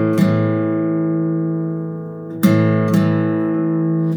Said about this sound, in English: I'm going to play this one with a pick, so I suggest that to get that nice attack sound, you use a pick for this one. We're going to play the A string open and the D string. Let's play them together. We're going to go down up with the pick.